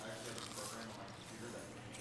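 Crunchy chewing from biting into a dumpling: a steady run of crisp, crackling bites and squishy mouth sounds, fairly loud and continuous over about two seconds, with no talking.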